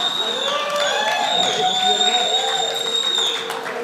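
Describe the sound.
A large crowd roars and shouts together, a dense, steady wash of many overlapping voices with whoops rising above it, holding at a loud level for about four seconds before easing slightly at the end.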